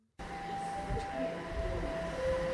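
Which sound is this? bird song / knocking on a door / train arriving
train arriving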